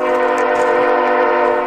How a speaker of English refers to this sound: As the light from the train's headlights gets brighter and the horns get louder and longer, they stay put. In past protests, the slow-moving train has stopped. 500 feet away, 200 feet away, 100 feet away.